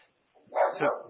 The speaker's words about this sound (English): My dog is barking. Even he is distressed about the defensive end situation.